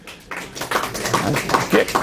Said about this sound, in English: So thank you to all of you for coming out, whether you're here in person, yashar koach to you. Please give yourselves a very warm round of applause.